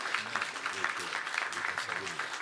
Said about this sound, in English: So please join me in giving them a round of applause and also asking the Lord to continue to bless them.